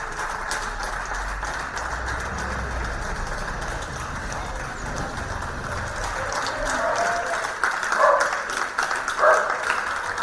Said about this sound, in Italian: Ogni giorno alle 16 si esce in balcone per fare un applauso dedicato a loro.